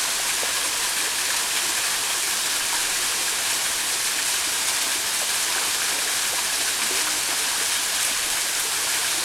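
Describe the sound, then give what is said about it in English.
A stream flows steadily over stones at a peaceful, untouched waterfall site, a continuous bright rush and babble of water that stays even throughout, with no voices or other sounds. “skipping over stones to reach the water.”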